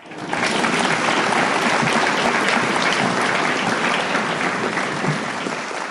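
An audience at a meeting breaks into sustained applause for a speaker who has just finished. It is a dense, steady wash of many hands clapping at full volume that holds for several seconds and barely fades toward the end.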